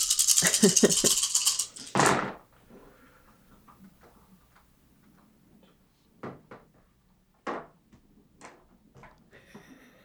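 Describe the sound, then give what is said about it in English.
A handful of dice, a dice pool including a hunger die, rattles loudly for about two seconds as it is shaken, followed by quiet stretches broken by a few sharp, scattered clacks as the dice tumble and settle. “Sorry, I got a lot of dice.”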